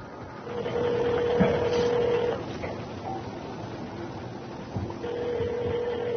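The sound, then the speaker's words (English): A telephone rings twice, each long electronic tone lasting about two seconds with a pause between, heard at moderate volume over a steady background hum and some faint clatter. “Answer the phone.”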